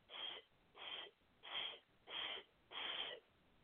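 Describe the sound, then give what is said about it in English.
Five forceful breaths blown out in a steady rhythm during a breathing exercise with the abs held in, each a short breathy whoosh about half a second long with brief pauses between, with no talking. “Take a deep breath in, hold the abs in, and you're going to breathe.”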